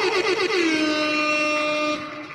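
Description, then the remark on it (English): A loud, brassy air horn blares in one sustained blast of about two seconds, its pitch dipping slightly at the start before holding steady, then cutting off abruptly. “A little bit of air horns.”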